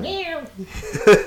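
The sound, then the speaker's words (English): A person imitates a cat's meow with one drawn-out, nasal, gliding call, followed by a brief burst of breathy vocal noise. It is fairly loud. “But unscrupulous ones would put a cat, because cats in a bag, meow, there's another good animal imitation.”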